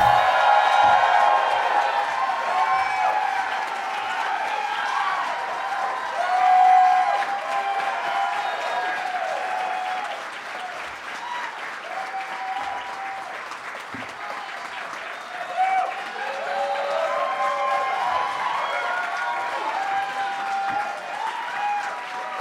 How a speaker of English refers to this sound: You guys clapped for so long, just made it sound like I was lazy getting out here. But I appreciate it.